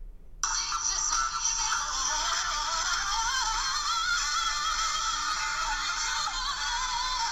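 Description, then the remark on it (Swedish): A tinny recording of live singing, a video clip filmed on a mobile phone, plays through the phone's small speaker held up to the microphone, thin and lacking bass, starting abruptly after a brief pause and continuing loudly without a break. “Jag har filmat ett videoklipp med mobilen. Nu håller jag upp mobilen mot mikrofonen.”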